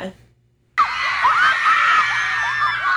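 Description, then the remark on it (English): In a replayed video of a river party in Florida, after a moment of near silence, loud high-pitched screaming bursts in abruptly and keeps going, a girl's shrieks rising over a dense roar of cheering, yelling voices. “The girl's screaming, I love you at the end.”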